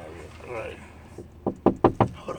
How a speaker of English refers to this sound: We get people knocking on the truck. Knocking on the truck.